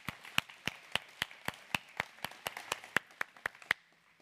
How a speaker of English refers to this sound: Let's go ahead and clap for our children as they head to their classes.